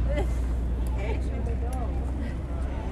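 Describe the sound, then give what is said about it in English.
A steady, low rumble of lobster boat engines motoring out of the harbor on trap day, some boats heading south and some going north, with indistinct voices and chatter over the drone. “We've got a couple of boats heading south out of the harbor. A couple of boats going north.”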